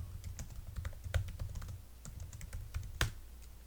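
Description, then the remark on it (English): Rapid, uneven clicking of fingers typing on a computer keyboard, fairly quiet, with one sharper keystroke near the end over a low background hum. “Typing.”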